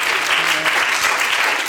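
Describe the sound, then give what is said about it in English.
A church audience claps their hands unto the Lord in a steady, dense burst of applause, loud, with many overlapping claps and no talking. “Would you clap your hands unto the Lord today?”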